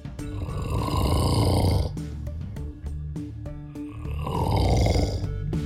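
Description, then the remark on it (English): A man snores loudly, two long, rough, rattling snores separated by a brief choppy, sputtering breath, with no talking. “One woman named Anne, she actually sent us a recording of her husband.”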